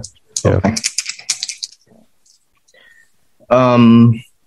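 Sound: rolling two dice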